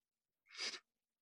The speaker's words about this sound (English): Then how didn't you know I was sick? I've been only sneezing the past 24 hours.